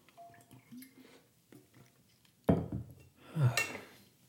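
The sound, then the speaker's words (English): Faint clinks and small handling noises, then a sudden louder knock and rustle as a glass of water is picked up, followed by a soft slurp as it is sipped and a bright glassy clink. No one speaks. “All right, let me grab a sip of water here.”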